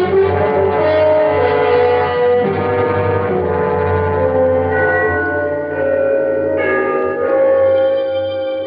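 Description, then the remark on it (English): Trinity church bells chime the three-quarter hour at a quarter to midnight, ringing out in a dense, continuous wash of overlapping tones, their resonant hum sustained and fairly loud throughout, with no voices present. “The bells of Trinity had just run the 3/4 hour.”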